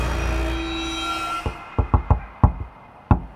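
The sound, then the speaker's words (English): A series of knocks on a door, about seven sharp raps in an irregular rhythm, coming after a few seconds of low humming ambience with no talking. “What's the password? I'm not in the mood for your bullshit, Randy. Open the door.”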